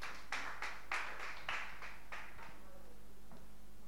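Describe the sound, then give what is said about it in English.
An audience claps to welcome the MC to the floor, in a steady rhythm, about eight sharp beats that gradually soften and trail off, followed by near silence with one last faint clap. No one speaks. “Please give her a clap offering as she comes.”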